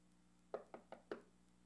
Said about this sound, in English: You go up, knock once or twice, hit the doorbell maybe, and you're out of there.